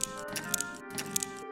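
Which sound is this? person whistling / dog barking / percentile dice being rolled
percentile dice being rolled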